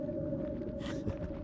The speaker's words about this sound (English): That's just a whale. They're not usually up this late, so I can't imagine they're moving too quickly.